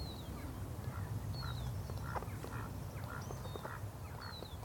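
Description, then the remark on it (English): A pair of ducks on a dark canal before daybreak trade sounds: the female gives soft grunting snorts and the drake small, muffled quacks in a loose, irregular exchange, with thin high whistles now and then over a steady low rumble of wind or water. “And all the time, soft vocalizations, grunting snorts from the female and little quacks from the drake.”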